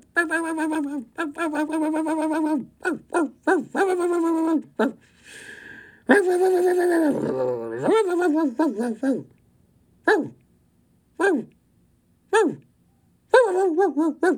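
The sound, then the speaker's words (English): A person's voice imitates a small dog yapping, firing off rapid, high-pitched yips in quick bursts, then a few shorter, spaced-out barks near the end, loud. “I'm fucking nonstop barking.”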